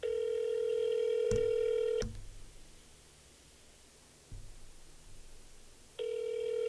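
A phone call ringing on the line: a steady, buzzing ringback tone holds for about two seconds, falls away to faint hiss with a couple of clicks, then sounds again.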